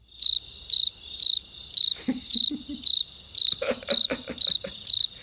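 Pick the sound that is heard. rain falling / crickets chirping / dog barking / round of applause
crickets chirping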